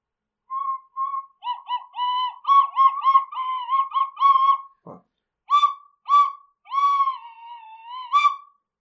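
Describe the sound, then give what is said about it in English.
A tin whistle plays a shaky run of short, breathy notes that waver in pitch, breaks off briefly, then finishes with a few more held tones, fairly loud with no talking. “Tin whistle, Please stop that”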